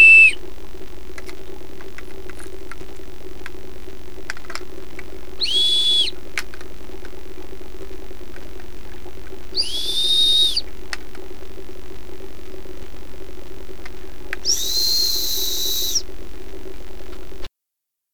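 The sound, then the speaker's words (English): Four short, high whistles, played as a demonstration of frequency, sound one after another at steady intervals over a constant low hum, each tone sitting a little higher than the one before. “So what was up with those four whistles?”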